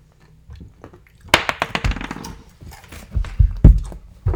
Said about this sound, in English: So roll 3 6-sided dice, and then because your attack is of fire, you can multiply whatever you get by 2. Oh, that doesn't count because that fell on the thing.